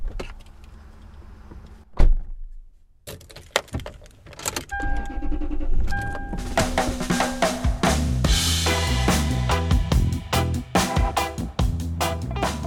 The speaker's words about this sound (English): Insert car shutting door sound here and car starting sound here.